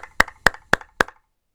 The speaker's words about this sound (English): Again, they've been out through the whole situation just now, and it's amazing that they're continuing to do that, and it can't be easy for any of them. So let's give a big round of applause for them.